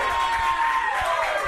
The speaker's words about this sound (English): I have tour posters, which I will sign for you, and if you all clap that loud, you have to buy one.